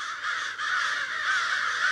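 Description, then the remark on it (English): Several crows caw harshly and continuously while mobbing a raptor, their overlapping calls forming a loud, agitated chorus with no pauses. “If you hear a ruckus and spot several crows circling and swooping toward a tall conifer”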